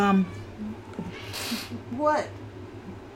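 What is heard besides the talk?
cat meowing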